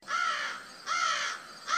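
Three harsh, raspy squawks from a bird-like alien creature of the jackal or skirmisher race, loud, each about half a second long and separated by brief pauses, with no voices present.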